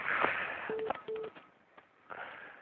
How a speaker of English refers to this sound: Do you hear that beeping? I did hear a little beep, yeah.